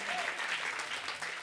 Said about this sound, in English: Come on, first church service. That's incredible. Clap your hands for the first church service since quarantine. If you're happy to be in church.